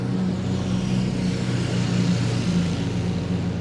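A steady, unbroken wash of road traffic on a busy high street: low engine rumble and hum from passing cars blending into a constant roar, fairly loud, with no voices.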